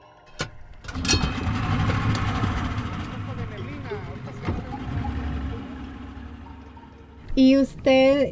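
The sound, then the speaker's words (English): A boat motor drones steadily, a continuous low rumble that holds for several seconds before fading, followed by brief voices near the end. The boat is heading out on the water at Teacapan, Mexico, to where a colony of cayo de hacha used to be. “but he still takes his boat out to where the colony of cayo de hacha used to be.”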